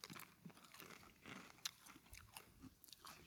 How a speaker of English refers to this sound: I want you to get up on that mic. Oh yeah, no, I will. I want to be able to hear you chew.